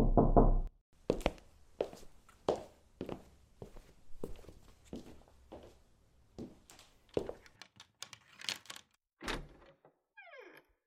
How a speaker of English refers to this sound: "Follow the lattice," is the next message, quickly followed by three hard knocks on his door.